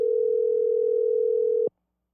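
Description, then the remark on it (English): A single steady electronic ringing tone of an outgoing phone call hums for under two seconds at a constant pitch, then cuts off abruptly, heard alone over a quiet line with no one talking. “Us calling people and them not answering.”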